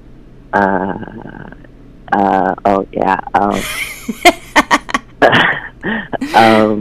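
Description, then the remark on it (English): A person sneezes, a sharp breathy burst amid other short voiced noises and clicks, with another noisy, explosive sneeze-like blast near the end. “Bless you, brother.”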